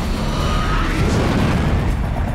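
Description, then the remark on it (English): Rockets shot by Batman explode against a dome in a loud, continuous roar of booming blasts, heavy in the low end and rumbling steadily for a couple of seconds with no voices. “Boom, hits the dome with the rockets, get it.”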